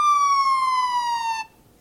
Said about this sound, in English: Oh, hey! It's the siren sound.